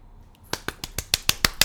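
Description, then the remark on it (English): A quick, steady burst of about eight sharp hand claps in an even rhythm, crisp and bright, with no talking over them. “That's not me clapping.”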